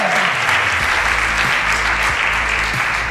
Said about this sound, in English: So could we give Brother Dale Perry a hand clap? Thank you for his time tonight.